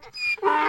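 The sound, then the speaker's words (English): A dog, set off by a donkey, vocalizes alone: a thin, high-pitched whine followed by a louder, drawn-out yelping howl, all within under a second and with no talking. “The donkey set off my dog again.”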